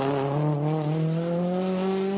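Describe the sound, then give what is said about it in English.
A Fiat Abarth 124 rally car engine revs loudly in a steady, buzzy drone, its pitch climbing slowly over a couple of seconds, with no one talking. “The Fiat Abarth 124.”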